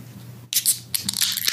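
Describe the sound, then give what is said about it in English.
A beer can is cracked open with a sharp metallic snap, followed by a bright hiss of fizz that sputters on in short bursts. No one speaks. “All right, we're going to go ahead and give this a nice crack solidarity.”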